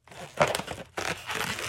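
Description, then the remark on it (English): A balloon is stretched and twisted, giving two bursts of squeaky, crinkly rubbing with a brief pause between them. The sound is moderately loud and there is no talking. “And people watch me do balloons a lot of times.”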